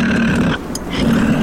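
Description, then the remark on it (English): A mountain lion vocalizes with a loud, rasping growl that holds steady, breaks off briefly in the middle, then resumes. No one speaks. “We're listening to the sounds of a mountain lion.”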